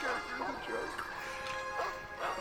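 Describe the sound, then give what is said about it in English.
Several dogs bark and growl in a steady, overlapping series of sharp bursts, fairly loud, over a constant noisy background. “You hear barks and growls start flooding the room as soon as the grate begins to move.”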